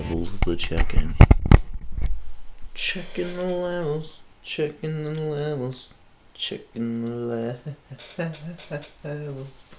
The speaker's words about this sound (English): Oh, yeah, it's a fucking chair, man. You can hear that fucking chair, man.